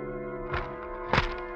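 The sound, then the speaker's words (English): Two dull thunks, a second apart, as a newspaper is shoved under an apartment door at 6 o'clock in the morning; the second knock is sharper and louder, over a steady low humming drone. “Finally, at 6 o'clock in the morning, the newspaper is shoved under your apartment door.”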